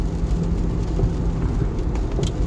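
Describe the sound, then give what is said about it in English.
Steady rain drums on a moving car, heard from inside over a deep, continuous road and engine rumble that stays constant throughout, with no voices; the car goes about 60 on an empty road with a 40 speed limit. “There's nobody here, it's raining, so it's like, fucking.”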